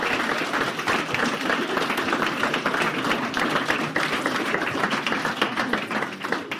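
An audience claps steadily for several seconds after a prosthetic hand demonstration, a dense, even wash of many hands with crisp individual claps popping through, holding at a loud level throughout with no voices.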